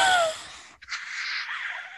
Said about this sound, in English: Oh my God, as if you're yawning again.